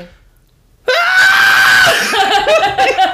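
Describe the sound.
After a moment of silence, a person imitates a woman waking up screaming: a loud, high-pitched wail held for about a second, then breaking into shaky, choppy cries.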